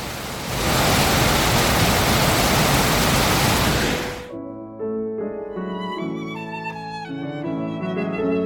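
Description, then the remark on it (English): A loud, steady roar of the rushing St. Louis River, in a park, fills the first few seconds with dense hiss, then cuts off as music begins. “we will let you hear not quite a babbling river, but a rushing river to play this segment out.”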